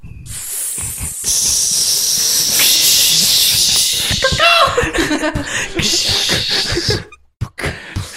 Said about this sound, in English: And there were snakes.